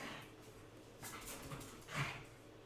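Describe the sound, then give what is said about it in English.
A dog plays roughly with a stuffed toy, with soft whimpers and scuffling, rustling bursts that build to a slightly louder flurry near the end. No one speaks. “My dog is beating up on a stuffed animal.”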